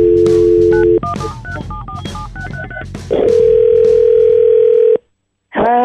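A steady telephone dial tone, then a quick run of keypad beeps at shifting pitches, followed by a long unbroken tone that cuts off into silence before a voice begins; a call placed on the radio segment The Neighbor Dispute on Froggy 92.9.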